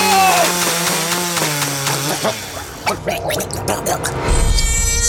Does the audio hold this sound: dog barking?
no